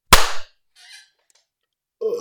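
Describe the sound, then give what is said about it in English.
One loud, sharp hand clap, made after a 3, 2, 1 countdown to sync the audio, cracks out and rings off briefly, followed by a soft rustle, then a voice starts talking near the end. “Okay, let's do the clap.”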